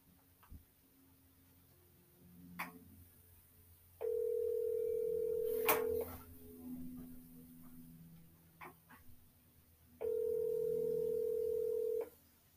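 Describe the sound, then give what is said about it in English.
An outgoing phone call to a friend rings out: two loud, steady, mid-pitched ringback tones, each lasting about two seconds, separated by a roughly four-second pause filled with faint background noises. “I'm going to call him back mid-podcast.”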